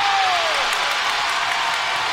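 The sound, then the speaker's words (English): A crowd at a basketball game with the home team USA Patriots playing the Rockets roars and applauds nonstop, a loud, dense wash of cheering and clapping, with a brief falling tone near the start. “Listen to this crowd. This is unbelievable.”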